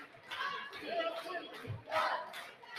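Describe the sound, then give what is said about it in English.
The Keota Eagle student section cheers and yells during an HLV timeout in the third period of a game, a dense, sustained roar of many voices, with swelling shouts and a brief low thump partway through. “And here comes your Keota Eagle student section.”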